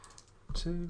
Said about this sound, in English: So, I just quickly need to count out the dice for this, if you'll just bear with me a second.